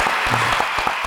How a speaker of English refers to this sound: Give him some applause for that right there.